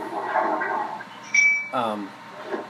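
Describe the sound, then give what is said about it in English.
A toilet flushes with a steady rushing, gurgling wash of water, and the toilet gives a brief high-pitched ding partway through, while a voice murmurs faintly alongside. “So I think with the sound of that flushing toilet we can bring Thunder Qualified movie reviews to a close.”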